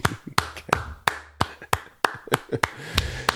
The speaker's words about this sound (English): let me okay. just applaud you for a minute.